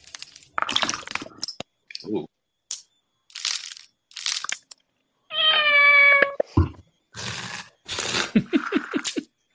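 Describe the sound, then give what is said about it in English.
A cat in a cooking video lets out one clear, drawn-out meow in the middle of a series of short crunching and crushing noises, like food being chopped or crushed. “Man, you got a really chill cat for that.”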